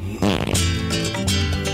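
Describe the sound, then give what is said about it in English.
A loud fart sound effect, a wobbling, sputtering blast lasting about a second and a half, used for a segment of Shakespearean fart jokes on Doug Mulray's FM breakfast radio show, with no talking over it. “20 all-time great Shakespearean fart jokes.”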